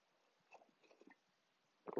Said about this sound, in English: Let me take a sip of coffee.